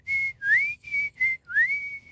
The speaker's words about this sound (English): I don't know why I need to whistle, because I just feel like, you know, we live in a day and age where maybe we don't whistle as much as we used to.